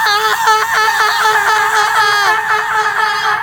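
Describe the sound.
A person in the woods lets out a loud, sustained high-pitched scream imitating a Bigfoot call to attract Bigfoot, a wavering wail held for a few seconds without a break.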